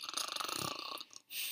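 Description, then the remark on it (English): A voice imitates a snore: one rattling, throaty snort lasting about a second, followed by a short pause and the start of another breathy rasp. “grows silent and starts to snore once more.”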